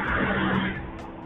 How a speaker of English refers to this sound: I don't know where that damn bus is going.